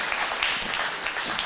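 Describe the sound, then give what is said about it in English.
An audience claps for two volunteers called up for a short one-act play, a steady, dense wash of applause, many hands producing a bright, crackling patter that holds an even loudness throughout the short burst. “You clap for our volunteers.”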